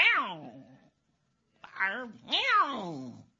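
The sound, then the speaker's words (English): Cats in a fight give three drawn-out, wavering yowls that slide downward in pitch, loud, with a short silence after the first and the last two running together. “We're getting a cat fight, huh?”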